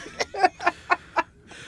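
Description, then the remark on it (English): A duck quacks five times in a quick, steady series of short, nasal calls. The calls are fairly loud, with faint background noise and no talking. “We hate ducks, too! Quacking and running around!”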